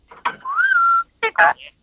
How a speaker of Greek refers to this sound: Είναι παπαγάλο. Ναι, ναι, έχει πολλά.